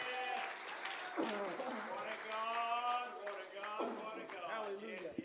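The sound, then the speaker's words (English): An audience at a church service claps steadily, the applause continuing throughout while voices call out and sing loudly over it. “And we clap our hands.”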